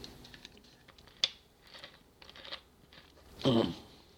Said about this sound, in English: Now, excuse me while I get a sip off of this massive 2-liter bottle of Dr. Pepper that I've got right here.